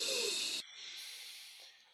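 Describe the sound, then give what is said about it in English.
A deep, breathy inhale taken during a stretching exercise, a rush of air loud for about half a second, then easing into a softer, airy hiss that fades out. “Take a deep inhale here.”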